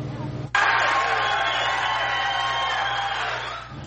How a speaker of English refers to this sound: As you can hear there, the crowd was very loud at certain points. There were two public hearing sessions tonight. 600 people packed inside this old courthouse in Covington.